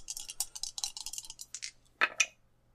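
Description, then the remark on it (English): Two dice for a D100 roll rattle in a rapid run of light, high clicks for over a second, then land with two sharper clacks, coming up 41, before going quiet. No one speaks over the roll. “Roll your D100.”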